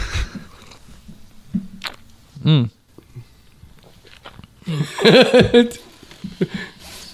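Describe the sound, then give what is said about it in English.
Wet, irregular mouth noises of a man swishing a sipped drink around in his mouth, coming in short bursts with pauses between, with brief voiced murmurs and a louder stretch of sound partway through. “Swishing around in his mouth. He's swishing it.”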